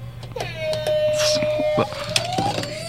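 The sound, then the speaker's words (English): A young voice imitates a siren, holding a steady wailing tone for a couple of seconds that slowly rises in pitch at the end, over a faint low hum and background clatter. “…, hit us with that little siren.”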